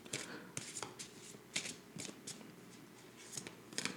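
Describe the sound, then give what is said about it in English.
A deck of tarot cards is shuffled for a second round of a reading, with a series of crisp, papery riffles and soft slaps repeating in an uneven rhythm, fairly quiet with no talking. “All right, we're shuffling.”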